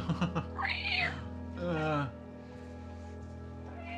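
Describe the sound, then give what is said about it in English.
Cats screech wildly in two loud, wavering yowls, one right after the other, before fading into a quiet, steady background hum. “There's something about those pterodactyl cats that go crazy.”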